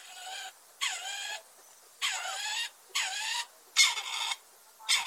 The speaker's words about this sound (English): The song of the partridge is given by both sexes. It's a sort of grr-brr, grr-brr. Not very attractive, but quite distinctive.